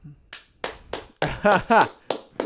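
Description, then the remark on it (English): A handful of sharp hand claps at an uneven, quick rhythm, with a brief voiced exclamation or laugh breaking in partway through. “Like, I just applaud him.”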